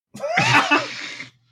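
A single rough, raspy cough, made away from the microphone, bursts out and trails off after about a second, with no talking around it.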